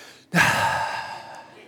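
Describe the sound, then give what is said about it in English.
A single deep, heavy breath, a long noisy exhale that starts abruptly and gradually fades, with no talking. “Now, you realize I was breathing deeper, right?”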